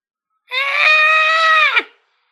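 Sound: a scream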